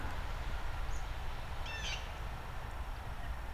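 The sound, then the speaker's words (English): A blue jay gives a single short, harsh call with a fainter chirp just before it, over a steady hiss of outdoor background noise and low rumble. “Some are migrating south, some are staying in their territory and not liking all the new blue jays that are around as they're passing through.”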